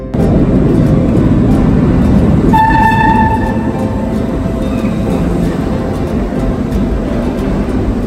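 A New York City subway train rumbles loudly and steadily through a station, with a brief two-tone horn or whistle sounding partway through and faint clacks and squeals over the continuous roar.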